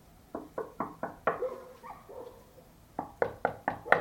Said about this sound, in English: So we finally decided to knock on his door and see if he might answer. Maybe try knocking.